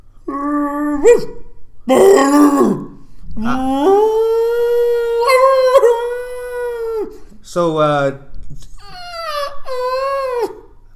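A dog howls loudly in several drawn-out, wavering cries, the longest lasting a few seconds, with short rough yelps in between and no talking.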